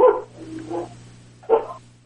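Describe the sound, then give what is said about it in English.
A dog, a street stray, barks a few times in short bursts, one sharp bark, a softer one, then another loud bark, with no one talking. “And the dog barks.”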